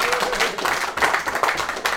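crowd, round of applause

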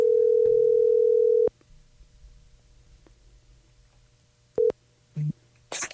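signal or alarm, telephone dial tone

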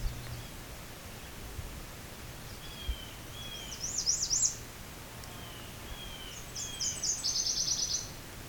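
bird, nashville warbler song

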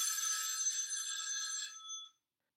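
signal or alarm, telephone bell ringing

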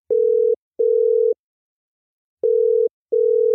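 signal or alarm, telephone ringing tone

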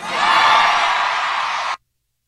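crowd, crowd cheering and whooping

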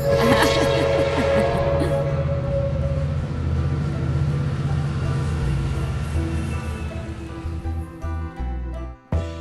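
vehicle, passing train

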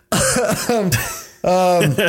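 human body sound, cough

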